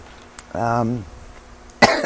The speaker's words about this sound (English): This might be another short podcast, just because I was able to keep the coughing at bay last week because it wasn't this bad.